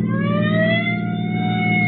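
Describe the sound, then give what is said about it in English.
A sheriff's police car siren wails loudly and steadily while chasing a lone car with Oklahoma plates, its tone slowly climbing in pitch, with a deep engine rumble underneath and no voices. “I'll give him the siren.”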